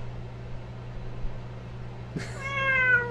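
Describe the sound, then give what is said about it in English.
A single drawn-out cat meow starts partway through, rising then trailing off with a clear tonal wail over a steady low hum and faint background noise. “My cat does not like this story.”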